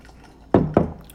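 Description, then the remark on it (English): Two quick, wet sips of rum and coke from a glass, each a short slurp about a quarter second apart, fairly loud against a quiet background with no talking. “Now, I'm going to have to sip some rum and coke on that.”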